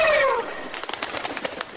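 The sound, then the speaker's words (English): Christmas turkeys gobble, opening with a short descending warble and then a rapid, rattling run of throaty bursts lasting about a second, moderately loud and with no voices. “It's not bats. It's turkeys. Christmas turkeys.”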